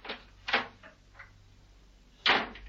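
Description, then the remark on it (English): A drawing-room door closes: a few soft clicks and knocks, a pause, then one firm thud as it shuts. No voices are heard. “The strange young lady led Mrs. Peel into a slightly more cheerful-looking drawing room and closed the door.”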